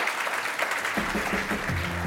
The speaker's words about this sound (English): Let's give our round of applause to getting through the gauntlet here.